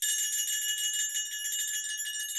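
bell ringing

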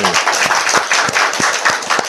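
hand clapping

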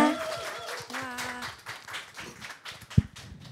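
studio audience applause

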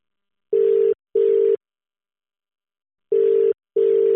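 telephone dial tone

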